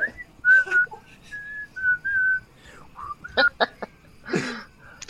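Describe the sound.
Someone whistles a short, wavering tune of several held notes, imitating birds chirping along to a song, followed by a few quick, sharp bursts of breathy noise.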